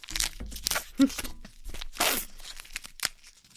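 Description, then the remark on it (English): Crisp tearing and crinkling of a dark chocolate peanut chew candy bar wrapper being ripped open, with several bursts of ripping plastic over a few seconds and no talking. “We are opening.”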